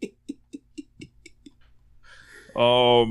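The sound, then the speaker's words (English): A pen scratching notes in a notebook journal, heard as a steady run of seven or so short tapping strokes, followed by a sudden loud, drawn-out voice at the end. “I heard writing them secret notes in his book.”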